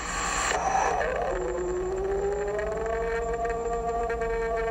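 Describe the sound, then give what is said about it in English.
A recording of a purported Bigfoot scream, made in an apple orchard in a backyard: a long, loud, drawn-out howling scream that holds one harmonic tone, its pitch creeping slowly upward over several seconds against a steady noisy background, with no talking. “That's your standard moneymaker scream.”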